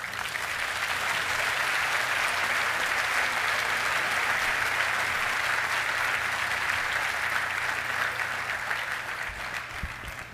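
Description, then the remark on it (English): Steady, dense audience applause welcoming Professor Gaddis to the stage at a festival, a continuous crackle of many hands clapping at an even loudness that tapers only slightly at the very end. “Please welcome him to our stage.”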